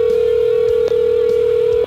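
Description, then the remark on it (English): A telephone ringing tone on a call placed through the Guru Show's phone system: a single loud, steady electronic tone held for nearly two seconds, with a tiny break partway through and no voices. “It's ringing, man. It's ringing.”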